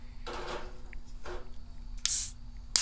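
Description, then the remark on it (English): A bottle of saison beer is opened: soft rustling and handling first, then a short, bright hiss of escaping gas and a sharp final pop or clink. “Let's crack it open.”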